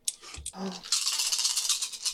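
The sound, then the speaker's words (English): A handful of dice rattle and clatter continuously, a dense, bright, steady rattling that follows a brief thump and low murmur at the start. “Well, listen to those dice. And it's all of them, however many there are.”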